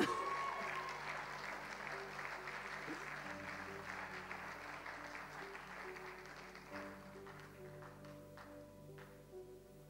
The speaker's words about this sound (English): Come on, give her a clap.